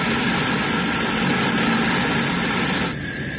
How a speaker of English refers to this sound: Right. We can use the jets as brakes now. You think a 9/10 burst should do the trick